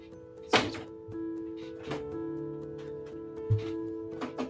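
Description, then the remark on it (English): Small earbuds dropping onto a hard surface, with a sharp thunk followed by a couple more light knocks spread over a few seconds, against a steady low background hum. “You dropped your earbuds.”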